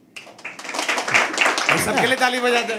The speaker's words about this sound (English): Yeah. It was the nice, gentle applause.